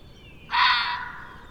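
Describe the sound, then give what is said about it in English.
A red fox gives a single harsh, raspy call, a loud scratchy burst lasting about a second that fades gradually, with no one talking. “A red fox, what do I call that vocalization? It's certainly not a bark.”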